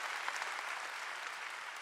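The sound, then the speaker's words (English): A crowd of people clapping together, a dense, continuous wash of many hands at a steady, fairly soft level with no voices over it, giving the Lord a big hand clap. “Shall we give the Lord a big hand clap, shall we?”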